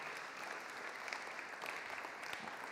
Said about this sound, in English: And she has been just stunning, amazing, and worked very hard, and lots of other people, but let's give them a clap because they really deserve. Do you want to?